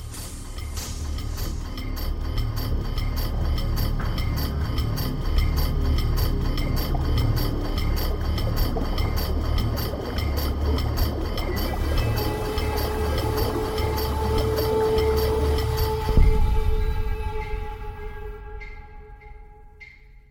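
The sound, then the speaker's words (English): In a sound collage about a lake imperiled by human impact, a dense, steady wash of water, representing water leaking out of the lake, fills the sound, joined by sustained humming tones. Then a single deep boom breaks through before everything fades to near silence. “There we actually hear the sound of water for the first time, followed by a boom.”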